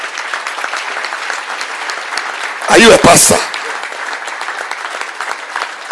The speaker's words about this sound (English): Keep clapping.